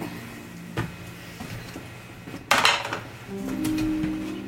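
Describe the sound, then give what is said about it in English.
Dice rolled during a tabletop role-playing game clatter across a hard tabletop in a short, bright burst of rattling clicks after a single earlier tap, with a low background hum underneath and no talking. “God, I need new dice so badly.”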